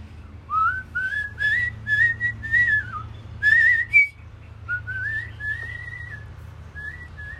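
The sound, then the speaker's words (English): A person whistles a smooth, flowing melody, with sustained notes gliding between pitches and short breaths between phrases, over a low background hum. “But I did an international whistling competition in 2019.”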